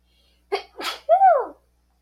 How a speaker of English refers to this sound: Anyway, wait, I have to sneeze really bad.